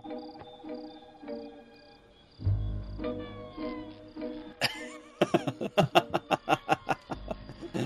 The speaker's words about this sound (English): Nice. The sound of the saw struggling.